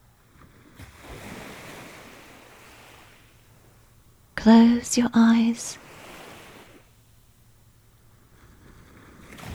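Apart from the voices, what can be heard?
ocean waves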